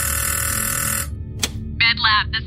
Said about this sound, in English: So without even answering that question, I hop back on the phone and call the med lab back.